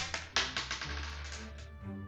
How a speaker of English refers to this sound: Just take the dice, roll it, whoever gets highest number goes first, middle, second, etc.